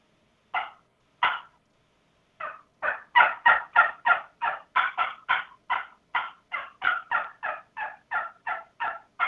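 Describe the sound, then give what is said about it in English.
A turkey call gives two spaced clucks, then breaks into a fast, aggressive run of sharp yelps and cutting, loud, with no one talking. “just, you know, work yourself into it, you know, maybe a couple of clucks and some yelps and then sure. Go into some cutting.”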